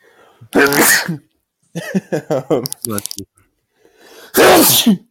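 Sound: loud sneeze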